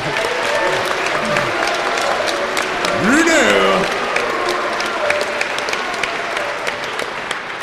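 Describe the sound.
A crowd applauds steadily, a dense wash of clapping that holds throughout, while a voice briefly calls out over it midway.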